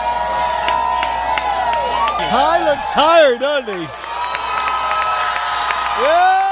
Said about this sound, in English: That's a good crowd screaming for him too, man.